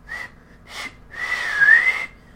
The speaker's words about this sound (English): Yeah, I can't do it. I can't do it with, like, notes very well. That's easier to do with, like, actual whistling, but